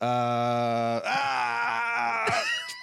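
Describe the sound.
A voice imitates a man waking up screaming in pain: a long, strained groan that breaks into wavering, pained cries, loud, lasting a few seconds before trailing off.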